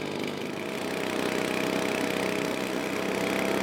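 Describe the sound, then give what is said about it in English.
A leaf blower's small gas engine runs steadily and loudly throughout, a constant buzzing drone with a rough, rattling edge and no voices. “Yeah, he definitely takes a leaf blower like an idiot.”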